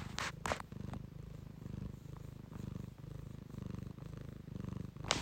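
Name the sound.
cat purring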